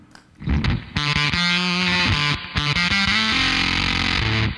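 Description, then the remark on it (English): Heavily fuzzed electric guitar, played through a Bumble Buzz fuzz pedal with reverb, plays a loud, saturated riff of sustained notes and quick changes, with a washy reverb tail ringing between phrases. No voices. “Yeah, so when you have that reverb on, it works really nice with the Bumble Buzz.”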